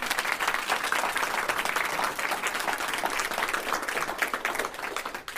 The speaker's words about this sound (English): George Stevenson High School have been here as part of the Speed Mentoring session that we've run. So a big round of applause for George Stevenson High School.